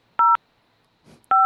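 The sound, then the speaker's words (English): Two loud, evenly spaced keypad tones as extensions are dialed into the automated phone line of School District 99 South High School, each a short steady dual-pitched beep, with a brief soft rustle in the gap between them. “What's all this beeps?”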